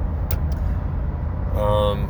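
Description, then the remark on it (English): A steady low rumble of a pickup truck driving down the road fills the whole stretch, with a couple of brief clicks early on and a short voice-like tone near the end. “So I'm driving my father's pickup truck, because I have been for the last, Tuesday will be 7 weeks.”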